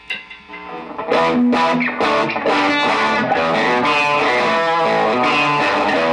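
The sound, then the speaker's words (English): Electric guitar played through a solid-state distortion pedal, a few loud, gritty strummed chords ringing out after a quieter opening, with a buzzy, saturated tone and no voices. “This is more of a solid state distortion thing. So that's a little bit of that kick.”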